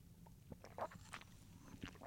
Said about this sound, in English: Pardon me, I had to take a sip of water. As I said, dry mouth is a side effect of one of my side effects.